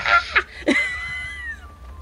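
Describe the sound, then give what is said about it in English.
A voice imitates an angry, yowling cat: two short, harsh cries followed by a long, drawn-out wail that slides downward and fades, loud, with no speech. “Imagine like a cat right now, a very pissy cat.”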